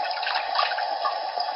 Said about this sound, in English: So there, now I have. That kind of sounds like somebody peeing, but. Well, it's. Either way, the fire is put out. It's the slow pour water in bucket on Wii video.